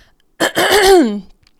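A single loud throat clearing, a raspy burst of about a second that starts rough and noisy, then slides down into a voiced, groaning tail before cutting off. No one speaks.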